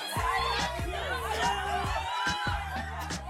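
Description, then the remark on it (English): A crowd of fans screams continuously in high, overlapping, wavering voices, with a steady thumping bass beat pulsing underneath throughout. “They're just screaming.”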